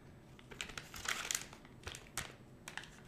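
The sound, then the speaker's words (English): A plastic packet of liquid gel crinkles and crackles as it is opened with scissors, in a string of short, irregular bursts, sharp rustles coming and going over a few seconds with no one speaking. “Oh, okay, there's a little thing with the scissors. Okay, I got it.”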